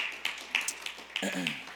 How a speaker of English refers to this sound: Well, welcome again to Renovation Church, week 2 in our new place. What do you think? Pretty decent? Go ahead, clap.